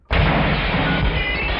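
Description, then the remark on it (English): A car crash heard over a phone line, after another car pulls out in front of the driver: a sudden, loud impact bursts in after a moment of quiet and becomes a sustained, crunching roar of noise that doesn't let up. “It sounds like you just got hit by a car.”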